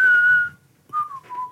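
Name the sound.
person whistling a tune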